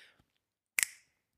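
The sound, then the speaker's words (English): A single sharp finger snap rings out on its own, with a crisp crack and a brief bright tail after a moment of silence. “Someone was clicking their fingers.”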